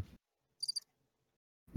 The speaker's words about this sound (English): he played cricket sounds.